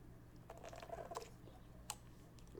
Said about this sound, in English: Sorry, I got a sip of my coffee there.